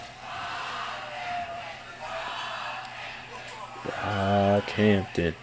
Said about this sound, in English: Yeah, so they're like cheering for him right now. Tell them to get their asses out on stage. Come on, boys. Uh-oh. They're screaming. They're screaming now.